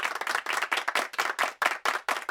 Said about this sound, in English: Thank you all, thank you, thank you. Hey, I could listen to you applaud all night, but I've only got 45 minutes up here.